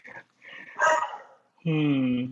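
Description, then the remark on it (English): A female dog gives a few short, sharp barks, then lets out a long, drawn-out whining whimper that slowly falls in pitch, fairly loud. “And you see, we have a dog as a friend somewhere.”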